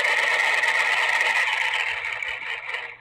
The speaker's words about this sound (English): Give me 1 second here. I'm going to sharpen my pencil.